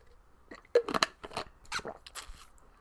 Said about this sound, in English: So I'll drink some water.